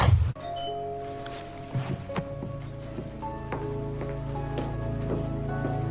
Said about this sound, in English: She's going to answer the doorbell. Here we go.